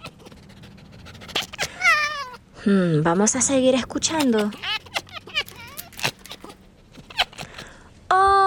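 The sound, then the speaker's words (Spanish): A baby fox (kit) gives a run of high, wavering whines and mewing yelps, fairly loud, in bursts with short pauses; a person briefly speaks near the end. “¡Es un zorro bebé!”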